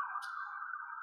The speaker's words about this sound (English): oh, here's an ambulance coming by my hotel room here in New York. Yeah, that New York street noise.